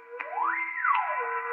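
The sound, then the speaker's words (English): The whistle of a volunteer firehouse sounds alone, a steady harmonic tone with a loud wail that climbs in pitch, holds briefly, then slides back down, with a reverberant, slightly echoing quality. “Now, next, the whistle at the volunteer firehouse.”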